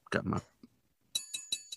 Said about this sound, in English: So also, as promised, we're gonna do some ASMR for you guys. So well, here's my fork.